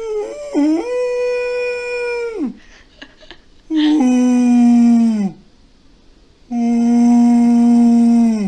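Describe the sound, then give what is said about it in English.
A person's voice imitates a baby beluga whale call: three long, loud tonal cries, each held steady then sliding downward, separated by brief quiet breaths. “That was a baby beluga.”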